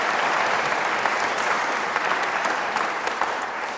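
A round of applause from a group, steady dense clapping that holds at an even loud level throughout with many overlapping hand claps and no voices standing out.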